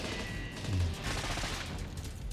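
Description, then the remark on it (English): Rapid gunfire from two boat-mounted guns in a night film scene shot with a model boat, firing to slow boats making 48 knots: a dense, crackling volley of overlapping shots with a low rumble underneath, loud and continuous throughout with no voices. “Keep firing. We've got to slow them down.”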